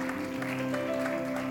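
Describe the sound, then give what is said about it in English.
A church audience gives the Lord a clap offering, clapping steadily in a dense, continuous patter, with a sustained keyboard chord droning underneath the whole time. “In the name of Jesus, give the Lord a clap offering.”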